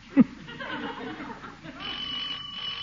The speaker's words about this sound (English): Doorbell, shall I go on?